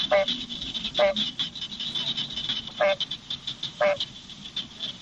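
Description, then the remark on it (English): Barking tree frogs give repeated short, hollow bark-like calls about once a second over a steady high-pitched chorus of smaller frogs trilling in the background. “you can imagine why they call it a barking tree frog”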